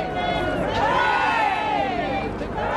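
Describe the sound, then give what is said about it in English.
A large crowd in Windsor, England sings the national anthem together in unison, their massed voices holding long, swelling notes, loud and continuous throughout, with the murmur of the gathering beneath, as the Queen's coffin arrives for the service at St. George's Chapel. “Crowds sang the national anthem.”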